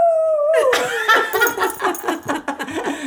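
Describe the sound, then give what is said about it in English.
A giant dog named Rufus howls loudly. It starts with a long steady tone that slides downward, then breaks into wavering, yowling cries that rise and fall for several seconds. “There's a giant dog.”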